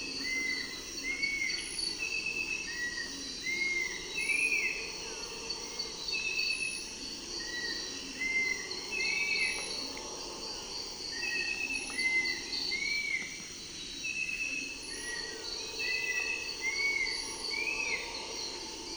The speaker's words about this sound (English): And what a pleasant cricket! Brief ringing trills that provide a musical counterpoint to the flycatcher.